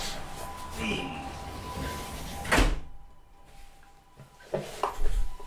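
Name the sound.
door being closed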